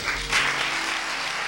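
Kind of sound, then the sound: crowd, church audience applauding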